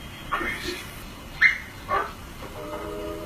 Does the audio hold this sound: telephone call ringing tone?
no